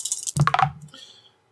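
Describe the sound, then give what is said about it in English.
A short flurry of hard clattering clicks as hurt dice are rolled across a table during a game, with a rattling burst that settles and fades within about a second, fairly loud, with no talking. “So I still roll my hurt dice.”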